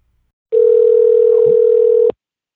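A steady telephone dial tone of an outgoing call to Glendale Federal Bank holds at one even pitch for about a second and a half, then cuts off abruptly, with no voices over it.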